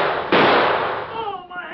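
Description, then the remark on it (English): In a radio drama, a single loud gunshot cracks out after a moment of hiss as the Lone Ranger fires at the sheriff's six-gun. Its harsh ringing tail fades over about a second before a man's voice begins speaking. “Carefully lining his sights on the sheriff's blazing six-gun, the Lone Ranger fired quickly.”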